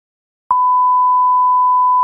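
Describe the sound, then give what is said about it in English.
After a brief silence, a loud, steady censor bleep begins, covering the name of a football team tipped as dark horse to win the 2021-2022 Champions League: a single pure mid-pitched tone that holds unchanged to the end, with no voice audible beneath it. “Well, tell you what, if that team that I just bleeped wins the Champions League”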